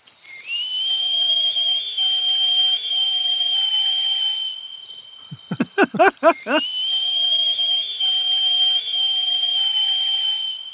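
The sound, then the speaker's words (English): A small rodent gives a thin, high, sustained whistle-like howl, holding steady for several seconds, breaking into a quick burst of squeaky chirps, then resuming the long piercing tone. Fairly loud. “But then they give off this tiny howl.”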